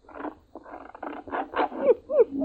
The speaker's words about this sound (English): On the front porch, the dog whined and shivered. The front door recognized the dog's voice and opened.